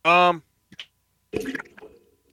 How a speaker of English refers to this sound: What was that? I hit the mic stand. Oh, I mean, it sounded like a deuce hitting water.